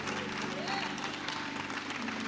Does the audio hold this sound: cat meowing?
no